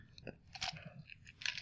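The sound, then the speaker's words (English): Crisp crunching of ice from a Diet Dr. Pepper drink being chewed comes in several irregular bursts of brittle cracking over a second and a half, with no talking. “Why is it crunchy? It's crunchy just like real Dr. Pepper. It has ice. It has ice in it.”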